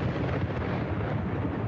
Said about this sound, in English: That is Thunder.